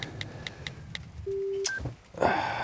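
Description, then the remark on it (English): A quick series of five or six short electronic phone keypad beeps, typed while texting a message, taps out in an irregular rhythm, then a longer steady tone and a brief higher blip, all clear with no voices. “I better text Debbie, tell her she's sleeping alone tonight.”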